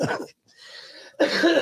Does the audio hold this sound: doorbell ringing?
no